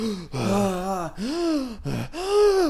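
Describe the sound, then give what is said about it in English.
A voice makes four loud, exaggerated gasping breaths in quick succession, each drawn-out and throaty with a wavering pitch, with no talking. “Sit quietly and breathe deeply.”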